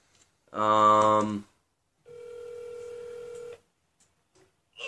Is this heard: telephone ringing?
yes